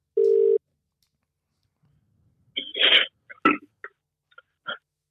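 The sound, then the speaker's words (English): A short, steady telephone tone sounds for about half a second as a host places a call to a caller, followed after a pause by several abrupt, breathy bursts of noise. “Going to get on the gear on the line. Beep.”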